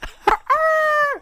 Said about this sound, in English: But it's a rooster now.